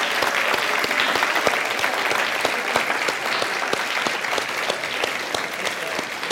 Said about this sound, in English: So if you are a dad, a stepdad, a grandfather, would you stand and let's applaud, let's give it up for our dads this morning.